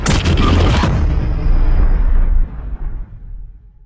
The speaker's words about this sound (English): There's a lot of orange in the trailer, the explosion of, I imagine, of the atomic bomb.